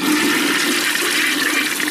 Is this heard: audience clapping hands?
no